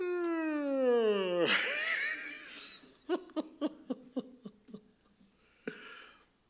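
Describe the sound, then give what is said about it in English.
A voice imitates someone's yawn: a long, drawn-out yawn that slides downward in pitch, followed by a string of short, rhythmic breathy bursts like soft chuckling, fairly loud. “Somebody just yawn.”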